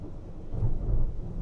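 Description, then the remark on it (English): A deep roll of thunder from a January lightning storm rumbles low and heavy, swelling louder midway before holding steady, with a faint hiss of rain beneath and no voices. “Was that lightning that or a car like crashing?”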